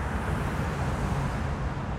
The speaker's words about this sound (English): Traffic whips by below Tantur's hilltop in a way that would make Chicago commuters feel right at home.